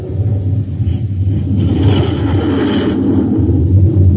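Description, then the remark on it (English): A Scorpion jet fighter, a 20-ton aircraft with rocket pods on its wingtips, roars steadily as it takes off, a loud, continuous low rumble with a brief hissing swell midway, no voices. “The Scorpion takes to the air like magic.”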